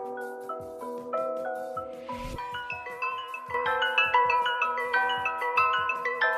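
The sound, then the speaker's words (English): A song plays with bright, bouncy synth melody notes over a steady thumping beat, with a brief noisy swell partway through; no voices, just the music. “This is his song called ….”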